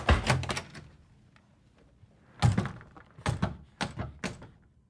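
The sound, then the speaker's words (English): A dining room door is swiftly flung open with a heavy wooden thunk, surrounded by a cluster of sharp knocks and bumps: a quick flurry at first, a louder bang midway, then several fading clunks. “Then he swiftly threw it open.”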